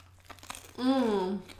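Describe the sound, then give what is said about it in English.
Several crisp, irregular crunches of people chewing crusty buttered bread, followed by a long, low, satisfied moan that slowly drops in pitch. “Like, if you have a phobia of listening to people crunch mm-hmm. and moan, maybe avoid this one.”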